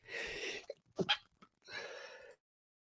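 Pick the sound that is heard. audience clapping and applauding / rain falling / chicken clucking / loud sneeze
loud sneeze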